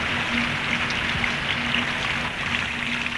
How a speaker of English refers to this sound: and rain thunders down out of a grey sky. Milford Track Party number 64, that was our party, has begun a wet tramp down the last stage of the track, the 13 miles to Sandfly Point.